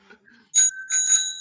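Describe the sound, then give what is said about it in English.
A bicycle bell rings twice in quick succession, bright and metallic with a lingering shimmer, clear after a brief faint murmur at the start. “You should have said bicycle bell.”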